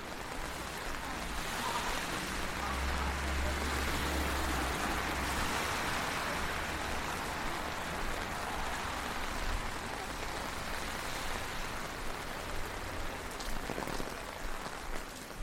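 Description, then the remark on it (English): Heavy rain pours down steadily onto a city street by a Wendy's alongside the freeway, a dense, continuous hiss of drops spattering hard surfaces, with a faint low rumble of traffic underneath and no voices. “So we've made it across that crazy intersection, the rain's still tipping down.”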